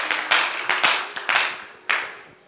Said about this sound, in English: Why don't you clap for Jesus as you take your seats?